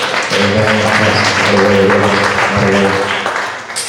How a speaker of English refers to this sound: Let's give the angel of this house, Pastor, a hand. Bless you, Pastor. So my man holding his pulpit down, Lord, bless your heart. Let's give him a hand.